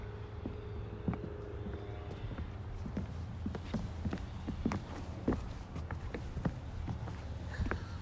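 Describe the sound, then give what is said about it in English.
Footsteps walking around, a steady series of short, sharp taps scattered across several seconds over a low rumbling background, with occasional louder hard steps. “I'm going to walk around and get some foot sounds.”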